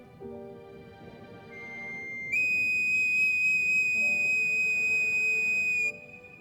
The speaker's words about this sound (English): Here, this is for you. The bone whistle? You're giving your treasure to me? Play it for me again.